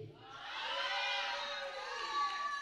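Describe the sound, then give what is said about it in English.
A large crowd shouts and cheers together in a loud, sustained roar of many voices, rising slightly and holding steady throughout, with no single voice standing out. “You're not listening because you would have shouted better than that.”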